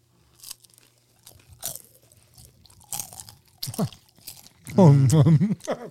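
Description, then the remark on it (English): Crisp crunching of someone chewing a fried egg roll, with sharp irregular bites repeating for several seconds before a voice briefly sounds over the end. “So for those of you listening to the audio, hey, we're just going to, you're going to hear us chewing.”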